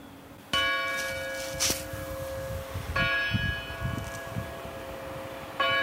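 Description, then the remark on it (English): Church bells in the quiet town center of Fletcher ring out in three distinct strikes, each with a long, shimmering harmonic hum that lingers over low background rumble, fairly loud. “The most exciting thing that happened when I was there, the church bells rang.”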